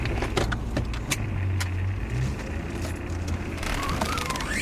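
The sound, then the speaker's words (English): Clicks, rattles and thumps of someone climbing into a car, followed by a steady low engine hum as the vehicle gets underway. No one speaks. “I'll drive. Just get in the car.”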